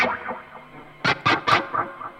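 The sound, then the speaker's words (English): A heavily processed sound drenched in roomy, delayed reverb: a smeared, washy tone gives way to three loud, punchy bursts whose echoing tails hang and fade away. No voices. “Okay, reverb next. We're gonna delay our reverb. This is gonna sound roomy as hell.”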